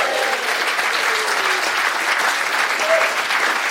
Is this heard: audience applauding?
yes